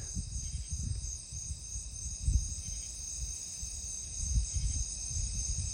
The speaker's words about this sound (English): Just the sound of another cricket.